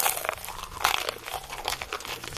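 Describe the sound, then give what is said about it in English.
Someone bites into a Popeye's fried chicken sandwich, producing a steady run of crisp, crackly crunches with a few louder bursts. No one speaks. “That is a chicken sandwich.”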